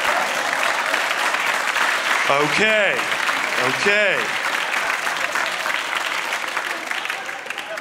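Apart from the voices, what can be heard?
audience clapping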